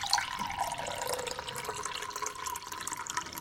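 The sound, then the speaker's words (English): Another cup of coffee is poured in one steady stream one morning in an old house, a gentle liquid splashing and gurgling that runs for a few seconds with no voices. “Just the sort of day I'm bound to be called out, Steve thought as he helped himself to another cup of coffee.”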